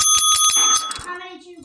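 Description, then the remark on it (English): A tap bell, bought in a shop and marked 'tap for tea', dinged rapidly about five times to call for tea, bright, its metallic ring lingering and fading after the last strike. “Because she rang that bell.”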